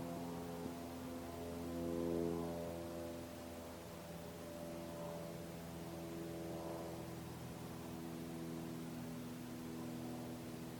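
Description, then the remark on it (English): A steady droning engine roar of a plane flying overhead, with layered low humming tones that swell slightly early on and then hold fairly even; no voices. “When the sound of the plane finally fades away, what is known next?”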